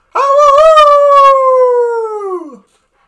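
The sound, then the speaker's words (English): A person imitates a wolf howl: one long, loud, sustained wavering note lasting over two seconds, sliding gradually downward before breaking off at the end. “I don't know how wolves do wolves.”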